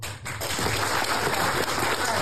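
A crowd breaks into sustained applause in answer to a call for audience members over 40 to clap, a dense wash of many hands clapping at once, fairly loud and steady for about two seconds with no voices standing out.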